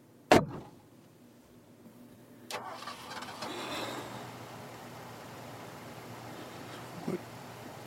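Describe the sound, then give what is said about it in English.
A car door thuds shut, then a starter cranks briefly and the engine catches, settling into a steady idle that rumbles on; no one speaks. “start the car.”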